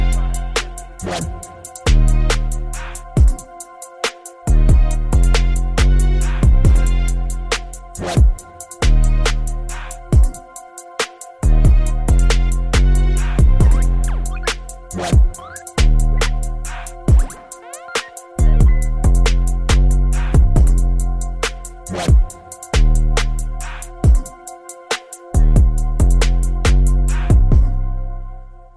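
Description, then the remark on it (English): A grime track, a new single, plays loud: a heavy, booming bass line under punchy, steady drum hits, with brief drops where the beat cuts out before slamming back in. No voices. “I had a huge grime phase a few months ago.”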